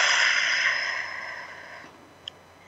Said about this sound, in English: Those of you who are able to, though, sit back in your chair, take a deep belly breath, breathing in through the nose, expanding your belly as big as it will get, and then out through your mouth like through a straw.